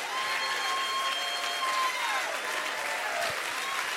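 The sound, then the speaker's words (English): A church audience claps steadily and densely for several seconds in praise of God, with thin high cheers and whistle-like cries rising above the sustained applause. “Why don't you make some noise for the King of Kings and the Lord of Lords?”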